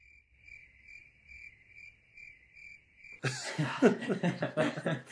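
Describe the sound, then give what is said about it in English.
Crickets chirp in a steady, pulsing rhythm for about three seconds, then a sudden loud burst of what sounds like laughter or coughing cuts in and drowns them out. “Oh, not the crickets?”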